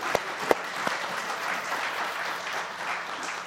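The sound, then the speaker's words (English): An audience applauds steadily, a dense wash of many hands clapping at once, with a few sharper individual claps standing out near the start. No one speaks over it. “So, yeah, you can clap.”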